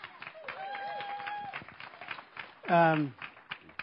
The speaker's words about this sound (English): You can clap.